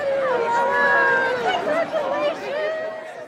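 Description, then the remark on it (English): A steady hubbub of many overlapping voices as a class of 2021 graduation crowd of Dragon parents and grandparents moves out of the stands onto the football field to congratulate graduates, with a few higher excited shouts rising above the continuous, fairly loud babble. “The students launch their caps into the air, and proud Dragon parents and grandparents jostle their way out of the stands and onto the field to congratulate them.”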